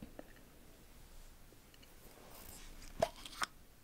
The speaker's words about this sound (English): Another jar. Candle. Yep.